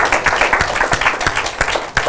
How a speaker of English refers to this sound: Can we give our Lord a round of applause here?